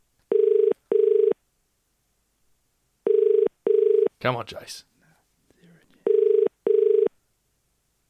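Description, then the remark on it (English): A telephone ringback tone sounds in three pairs of double rings, clear and steady, with a brief murmured voice between the second and third pairs, on a call dialled live from a studio to a colleague's phone, which goes to voicemail. “All right, let's dial his number.”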